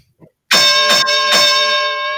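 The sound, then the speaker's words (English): A loud ring bell is struck about three times in quick succession to end the match, its bright metallic tone ringing on and slowly fading after the last hit. “Okay, let's ring the bell in this match.”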